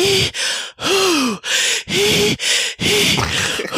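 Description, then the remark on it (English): A person imitates Lamaze breathing, the breaths used when giving birth: a rhythmic run of about seven loud, breathy huffs and gasps, several carrying a voiced, rising-then-falling hoot, with brief pauses between them. “You know, those breaths when you're like supposed to be giving birth, and like Katsura right here is like the birth partner.”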